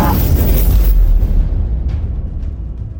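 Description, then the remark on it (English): A loud fireball explosion sound effect erupts at once with a deep booming roar, then fades into a long, crackling low rumble as the high hiss dies away. “And then there is, as he like decapitates the last Anuris and like spins around, there is just an explosion of fire from him, as if a fireball has gone off centered on him.”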